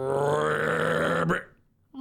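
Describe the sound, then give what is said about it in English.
A voice imitates a snore: one long, loud, rasping drone with a buzzing low pitch that cuts off abruptly after about a second, followed by a brief quiet pause. “You hear … snores. Can you give us a demonstration, please?”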